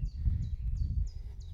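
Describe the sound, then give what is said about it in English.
A bird chirps outdoors, repeating a quick, high, slightly falling note about five times at a steady rhythm, over a constant low rumble of wind or movement. “Birds are going tweet mad here.”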